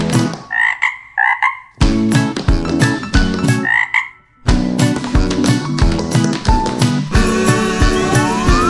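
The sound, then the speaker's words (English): Loud frog croaks pulse in a steady, musical rhythm, a choir of twelve singing frogs in song, with brief pauses between phrases and a tapping beat from little frog-sized tap shoes underneath. “We're singing frogs, and we're really quite unique.”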